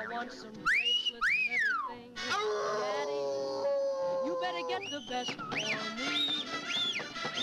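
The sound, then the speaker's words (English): A voice imitates a lustful cartoon wolf through a small slot in a door, with rising-and-falling wolf whistles and drawn-out howling yelps, loud, repeated several times in quick succession. “Just making horny wolf noises through the little slot in the door.”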